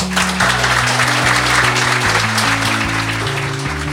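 A crowd applauds with steady, dense clapping that fills the entire stretch at an even, loud level, while low sustained musical notes shift in pitch underneath.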